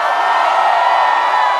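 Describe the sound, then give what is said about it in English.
A crowd at an evening religious service screams and cheers all at once, a loud, steady wall of high-pitched shouting and whooping that holds at full intensity without a break. “Tonight, maybe you need to scream some scream.”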